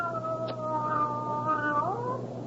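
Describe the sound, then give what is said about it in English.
A cat with pale blue eyes gives one long, drawn-out meow, fairly loud, holding a steady wailing pitch before it bends and slides at the end. No one speaks. “What makes you think she's a male cat?”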